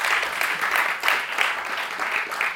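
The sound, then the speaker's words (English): An audience applauds the author Siri, a dense wash of many hands clapping at once with small swells in loudness, sustained throughout with no voices over it. “But before we begin, let's have another round of applause for Siri.”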